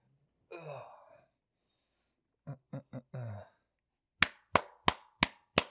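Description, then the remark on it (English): Five sharp hand claps for sound sync during a sound check ring out in a quick, even rhythm, following a few short throaty vocal noises and a brief scuffle of sounds, with no speech. “I'll clap again.”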